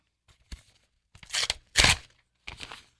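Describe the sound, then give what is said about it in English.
A paper envelope is torn open in a few quick bursts, with a sharp rip in the middle followed by a shorter final tear, crisp, with no voices. “Envelope number three.”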